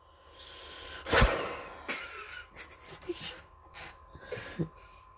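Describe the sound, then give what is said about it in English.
A dog breathes loudly in irregular, noisy huffs and snorts, with a few sharper bursts standing out over a quiet background. “you hear howling in the back, you hear licking balls in the back, you hear breathing really loud.”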